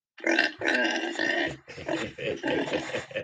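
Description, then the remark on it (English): A person imitates a pig with a quick run of rough, throaty grunts and snorts, loud, several bursts packed into about three seconds with no words. “Okay, I am sounding like a pig.”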